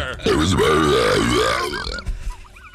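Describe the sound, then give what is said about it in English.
A man swallows air and burps it back out: a long, loud, croaking belch rumbles for about two seconds, its pitch wavering up and down before trailing off into a few quieter grunting gurgles. “Introducing... ….”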